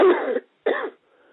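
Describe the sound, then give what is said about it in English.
Two harsh coughs in quick succession, each a loud rough burst, followed by a faint raspy breath or throat sound trailing off. “Now, somebody up on the chat room, you keep coughing. Keep coughing them out.”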